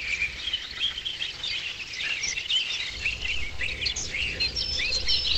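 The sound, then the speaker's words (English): A dense dawn chorus of real and artificial chirping birdsong in the Machine Auguries installation, spatialized across two sides of a room, some calls sounding slightly synthetic, layered with insect-like trills and a low rumble joining partway through, steady and building to a crescendo as the light turns from pink to yellow. “As the dawn breaks from pink to yellow light, the chorus reaches a crescendo.”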